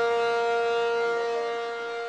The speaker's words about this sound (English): Emergency sirens roar at the Chevron refinery in Richmond, while a fire at the refinery sends flames and a plume of thick black smoke into the sky. The alarm means shelter in place.